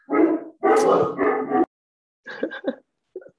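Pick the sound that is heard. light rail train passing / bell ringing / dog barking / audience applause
dog barking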